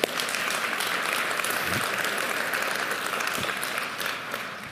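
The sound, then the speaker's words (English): A church audience applauds for Faye, a dense, even wash of clapping that holds at a constant loudness for about five seconds without pauses or cheering. “Yeah, you can clap for Faye.”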